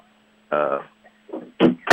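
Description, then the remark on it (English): A door is pushed shut: a short strained creak, then a couple of loud knocks and bangs in quick succession as it is forced closed. “I have trying to get a door closed here so I don't bother my wife.”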